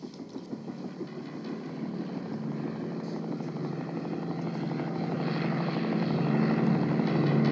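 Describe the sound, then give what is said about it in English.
An army helicopter's steady rotor and engine drone grows gradually louder over several seconds as it approaches, with no voices present. “What's that army helicopter doing here?”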